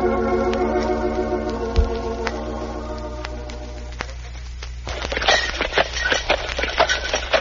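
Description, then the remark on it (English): Horse hooves clip-clop at a steady walking pace while a horse-drawn milk wagon rolls along, first over a sustained tonal hum, then with busier, louder clattering near the end. “In the year 1896, milk was delivered in a horse-drawn milk wagon.”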